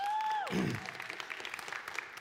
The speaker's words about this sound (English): Yeah, she can get an applause. She's awesome.